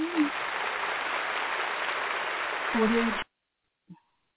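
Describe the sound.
A dense round of applause from a crowd, steady and fairly loud for about three seconds, with a couple of brief voices rising through it before it cuts off abruptly into silence.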